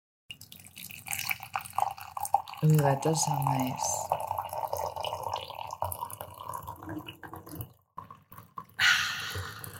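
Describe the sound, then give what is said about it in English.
Tea is poured into a cup: a steady trickling stream whose pitch rises briefly as it fills, with drips and a person's short remark heard over it. “I would pour that tea, by the way. Oh, I have some tea here for your ASMR enjoyment.”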